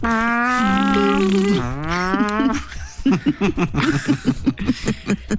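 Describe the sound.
A voice imitates a vuvuzela blown by fans in a crowd as a fart noise: a loud, sustained buzzing drone that wobbles and bends in pitch for about two and a half seconds, followed by a burst of chuckling laughter.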